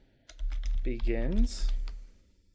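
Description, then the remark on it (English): Rapid clicking of keys on a computer keyboard in quick irregular bursts while looking up film review scores online, with a brief wordless voice sliding in pitch partway through. “Pull my keyboard a little bit from my mic.”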